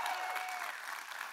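A small group claps in the name of Jesus after a prayer, a dense patter of overlapping hand claps at an even, moderate loudness throughout, with no voices standing out.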